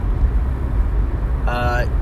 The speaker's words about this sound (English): I am right now driving behind a car.